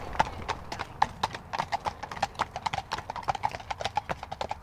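Hooves clip-clop in a steady, overlapping rhythm as two horses with riders walk past in the UK, the sharp hoof strikes ringing out over a low background rumble.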